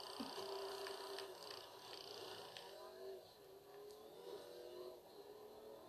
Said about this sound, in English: Yo, but what is that car, bro?